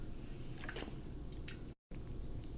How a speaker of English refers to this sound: I got to drink a little bit of water in my throat.